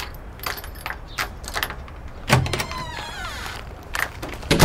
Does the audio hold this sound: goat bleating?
no